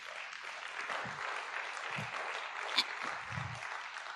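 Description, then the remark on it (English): A church audience applauds the Lord steadily, a dense wash of many hands clapping at an even level for several seconds, with a few scattered low thumps and a brief sharper clap or cheer midway. “Can we give the Lord a good round of applause?”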